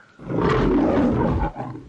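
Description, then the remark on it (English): A person growls out a loud, rough imitation of a tiger's roar, one sustained snarl lasting just over a second, then trailing off into a softer rumble. “And you're like, yeah, I want a tiger in my tank.”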